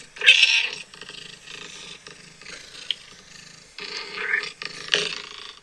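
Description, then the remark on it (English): A domestic cat named Buttercup meows several times in a row, the calls loud and drawn-out with a slightly strained, growly edge, a recording played back from a phone over a small speaker, with no talking. “while my cat Buttercup has left the room, my sister has one of her meows on her phone, so here we go.”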